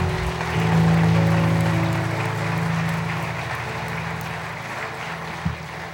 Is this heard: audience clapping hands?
yes